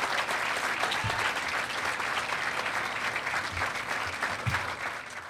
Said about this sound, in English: Let's give these Cyclones another warm round of applause for their effort.